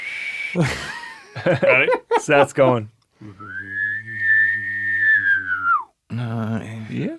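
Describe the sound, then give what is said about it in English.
A person whistles a single long, steady note in imitation of a bird call, rising slightly and then dipping at the end, with talking and brief laughter before and after. “Some kind of weird bird”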